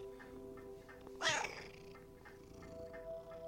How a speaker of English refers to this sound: Now that your grandmother's gone, Dorothy the cat keeps me company. I can talk to her about anything, just like I could with my wife.